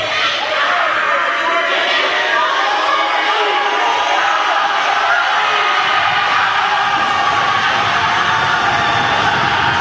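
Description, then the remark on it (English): A large indoor crowd of basketball fans roars and cheers continuously during a game in a gym, a dense wash of many voices echoing, loud and sustained for the whole stretch without letting up. “Aggie faithful getting into this ball game. Quite a crowd made the trip.”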